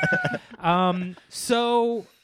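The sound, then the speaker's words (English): A human voice imitates a cat with two drawn-out, steady meows, loud, after a brief burst of muttered syllables, each wail held for about half a second. “Feed the fucking cat.”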